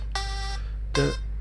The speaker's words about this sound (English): Literally, as soon as I hit the pause button, the timer went off, so...